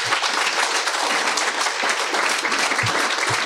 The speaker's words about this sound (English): Right. Well, will you please give a round of applause for our panel?